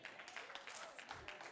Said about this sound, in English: Now she gonna clap.